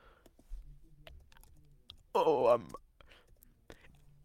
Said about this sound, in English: But I'm going to type in bye-bye and see where it goes with that.